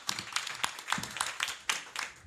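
A short burst of applause from a small audience: sharp, bright hand claps overlapping in an uneven, fairly steady patter at moderate volume, with no talking.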